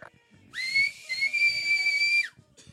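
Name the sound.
whistle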